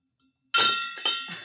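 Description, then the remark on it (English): A gong is struck after a moment of silence, its bright, shimmering metallic ring sustaining as two more quick hits follow, each adding to the loud, sustained wash of tone. “I'll do the gong if need be.”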